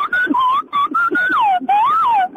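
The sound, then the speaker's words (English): A person whistles an imitation of the Clangers puppet creatures' voices: loud, warbling phrases that glide up and down in pitch, broken by short pauses, with no talking over them. “And I can do the clangers.”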